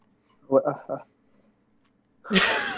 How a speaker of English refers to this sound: I was going to sneeze there, and I did sneeze.